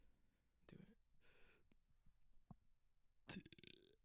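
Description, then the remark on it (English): A short, small burp with some breathy sounds and a brief rough vocal burst before it, then a quick throaty croak near the end. Low in level overall. “that one was a small little one, but I mean, you after any meal, I can probably start my own like natural gas plant with that.”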